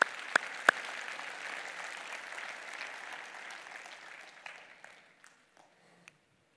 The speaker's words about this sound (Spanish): Si el Señor les habló en esta tarde, le podemos dar un aplauso a Dios, por favor.